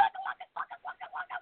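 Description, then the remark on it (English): A person imitates a chicken, making a quick series of short, rhythmic clucks in rapid bursts, fairly loud, with no other sounds. “And, you know, we're going to stand strong, and then we're going to cluck a little.”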